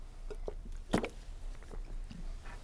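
Soft, wet mouth sounds of someone taking a sip of water, with one brief louder gulp or slurp in the middle and faint swallowing clicks around it, no talking.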